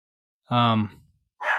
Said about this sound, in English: Let's let him keep barking in your ear for a second before I pause and decide to do something about it.